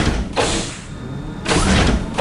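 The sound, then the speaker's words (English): An office's sliding door whooshes shut behind someone stepping out, with two broad mechanical swishes about a second apart, each about half a second long, moderately loud, with no voices. “Stepping out of Braylon's office, you pause for a moment after the door closes behind you.”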